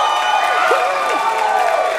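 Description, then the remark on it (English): A church audience erupts in steady cheering and applause, making noise for Jesus, with whoops and high voices rising over a dense, continuous wash of crowd noise. “So can we make some noise for Jesus really quickly?”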